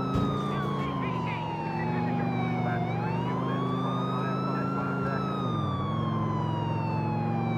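A police car siren in a video game wails steadily, its tone slowly falling and rising in long sweeps, loud over a deep, constant engine rumble.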